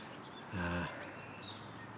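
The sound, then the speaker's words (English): Wild birds chirp and warble in a wet, waterlogged woodland with tall trees, several high calls overlapping, with a brief low droning sound cutting in partway through. “Actually good numbers of birds today.”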